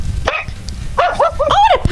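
A puppy barks up close with high, squeaky yaps: one short yip, a brief pause, then a quick run of four or five shrill barks in a row.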